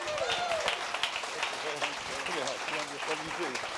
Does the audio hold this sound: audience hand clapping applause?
yes